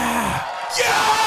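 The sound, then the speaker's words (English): A town hall crowd erupts in loud cheering as a senator states her pronouns, with yells and whoops rising over a dense wash of voices, dipping briefly before surging again. “But listen to the crowd erupt that she says what her pronouns are.”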